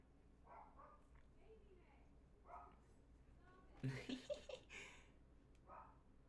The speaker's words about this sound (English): I wish my dog upstairs would stop barking. That would help so much with my sanity.